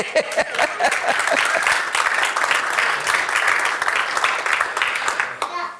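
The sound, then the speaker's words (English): A church audience breaks into steady applause at the preacher's request during a sermon, many hands clapping together in a dense, lively patter that holds for several seconds before tapering off at the end. “Let's go ahead and get a clap out of that one.”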